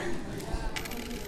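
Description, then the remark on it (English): A small scatter of coins placed as bets clinks down onto a hard surface, several quick metallic taps bunched together near the end, moderately loud over a low background hum. “They're betting money. Well, not money, but coins.”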